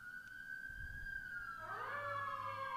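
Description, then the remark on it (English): Emergency vehicle sirens wail from outside, a steady high tone joined midway by a second siren sweeping in, with a low rumble underneath and no talking. “Oh, there's sirens.”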